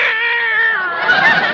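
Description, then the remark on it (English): A cat named Minerva lets out one long, drawn-out, loud meow, its wavering pitch stretching into a plaintive wail with no talking around it. “The way this cat eats is a caution.”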